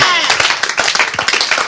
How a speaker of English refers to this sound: Oh, come on, you can do a little better and give the Lord a clap.